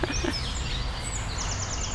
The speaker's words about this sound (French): Alors là, on a les camichés à collier qui répondent aux grues. Et au cariama huppé, c'est une autre espèce d'oiseau qui est encore plus loin, donc qui se répondent mutuellement.